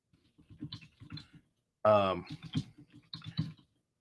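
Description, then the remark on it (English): Quick, irregular clicks of typing on a computer keyboard as someone searches for a link, fairly quiet, with a person talking briefly in the middle of the tapping. “You're typing. I am, because I'm trying to find a link for you, because I want you to put this live in the chat.”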